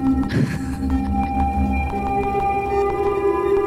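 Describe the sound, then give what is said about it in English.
A synth patch gives off sharp, irregular tapping clicks, like a woodpecker pecking, over a steady buzzing tonal drone with a swooping burst near the start. No one speaks. “think I made a templegio woodpecker on accident.”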